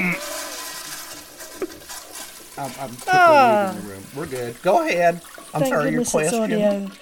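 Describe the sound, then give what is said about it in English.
A toilet flushes with a steady, hissing rush of water for a few seconds at moderate volume, then fades as people begin talking over the tail end. “Let me flush this thing.”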